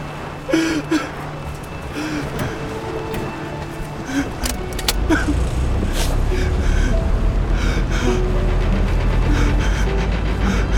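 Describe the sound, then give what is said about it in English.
Light clicks and a jangle give way, about five seconds in, to engines starting up and settling into a loud, steady low rumble that continues to the end. “Now start the engines.”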